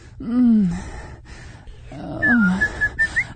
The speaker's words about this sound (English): Did I whistle Dixie right there? not sure. Was that? I think I whistled Dixie.